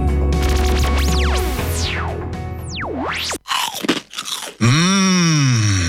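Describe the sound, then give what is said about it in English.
Loud crunching bites into Penny's slow-cooked crispy pork crackling, a few sharp bursts in quick succession, framed by swooping, wobbling electronic sound effects before and after. “Penny's Crispy Pork Crackling is slow cooked for that big crunch and taste. Put some crunch in your munch.”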